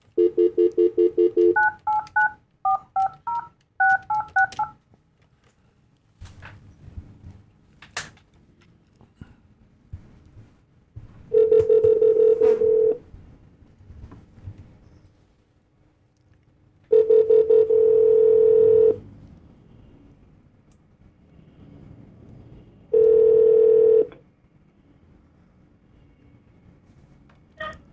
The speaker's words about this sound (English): So we're just going to be doing this phone call, and then our audio engineer will figure out a way to bring the audios together. So just bear with us for a quick sec.